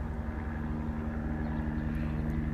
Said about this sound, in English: A lot of times, you know, they call them ghetto birds out here in Los Angeles. They call them ghetto birds. The helicopters. And helicopters are floating around towns.